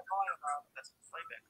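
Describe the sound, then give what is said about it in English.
Thin, tinny voice audio plays back in short bursts through a phone and a laptop that are both on at the same time, sounding echoey and band-limited like feedback, with indistinct speech. “I think your phone and the laptop are both on at the same time.”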